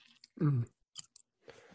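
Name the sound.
sipping coffee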